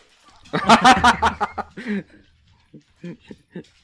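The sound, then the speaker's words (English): A dog barks at a person in a quick, loud burst of several barks, then lets out a few softer, shorter barks after a brief pause. “No, he's just barking at me.”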